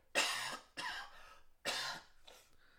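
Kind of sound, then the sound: human body sound, coughing fit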